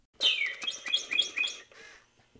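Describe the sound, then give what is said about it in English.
A red robotic toy bird, used to tease a pigeon, chirps in a quick run of about five bright, high-pitched tweets, fairly loud, with no one talking over it. “When I started this story, I decided to put in this moment where we're currently tormenting the bird with a robotic bird.”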